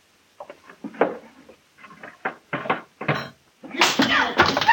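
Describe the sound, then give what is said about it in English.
A series of irregular thumping blows and smacks as a man beats his wife, fairly loud, building into a heavier, noisier flurry of impacts near the end, with muffled vocal sounds mixed in. “Hey, what's that? He's beating her.”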